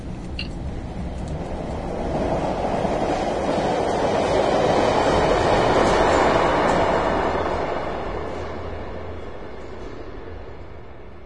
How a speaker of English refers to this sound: This is Victoria. The next station is Thames Square. This is a Circle Line train via High Street, Kensington and Paddington.